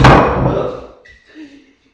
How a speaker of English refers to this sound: There goes some water on your new furniture